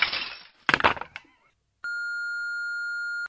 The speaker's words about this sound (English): I'm breaking your window.